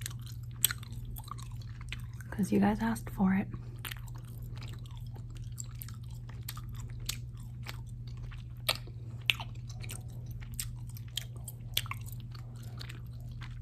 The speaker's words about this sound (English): And I'm just gonna have a piece of gum. And if you don't like gum chewing